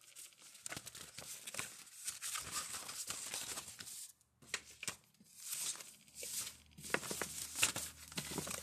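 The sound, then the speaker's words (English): A deck of cards being shuffled, a steady run of papery riffles, flicks and crinkly rustling with one brief pause midway. No one speaks. “let's get these in a little shuffle here.”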